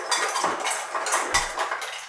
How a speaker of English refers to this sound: This is my mother, their grandmother, getting ice and water from the fridge.